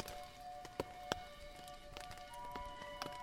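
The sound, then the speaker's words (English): Rain patters on a tent in scattered, irregular taps, a few sharp louder drops standing out over a faint steady hum. No one speaks. “It's raining, as you can probably hear.”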